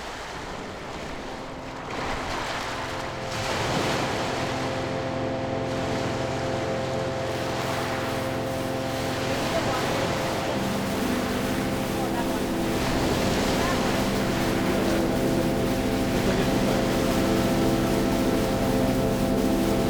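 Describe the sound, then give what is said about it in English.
Water washes and laps against the rocky lakeshore of the Leslie Spit in Toronto in steady, overlapping surges, with wind noise and a low, constant mechanical hum running underneath throughout. “This week's Fortnightly Frequency is from a trip I took to the Leslie Spit in Toronto, where there's lots of rocks and colors and, of course, water.”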